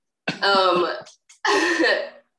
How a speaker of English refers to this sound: One, I am going to apologize in advance for a cough. I'm getting over you name it.